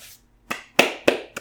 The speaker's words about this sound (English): Clap. Golf clap. Insert golf clap here.